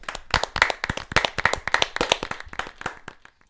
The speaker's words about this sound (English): And also a win against North Greenville, which is expected, but we can still clap. Right. We can still clap.